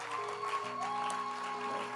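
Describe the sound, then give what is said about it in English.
An audience, present in person to hear the message, claps their hands in a steady, dense wash of applause, with sustained musical tones from a keyboard or organ holding underneath. “But clap your hands that you are here physically to hear the message.”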